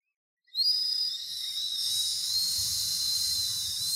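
failed attempt at whistling

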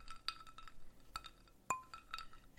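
glasses clinking

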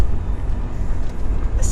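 car interior road noise

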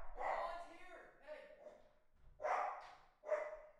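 dog barking

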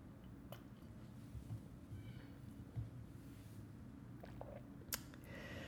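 sipping coffee

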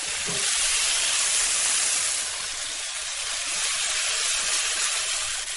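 bacon sizzling

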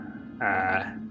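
dogs growling

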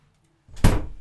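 door being shut

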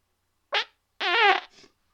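fart

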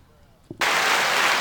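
applause

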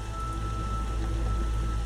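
rain falling

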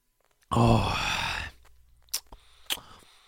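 sipping water

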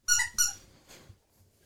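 squeaky toy squeaking

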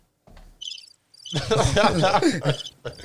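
crickets chirping sound effect

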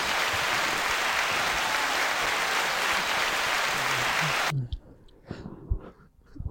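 applause sound effect

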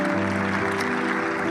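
round of applause

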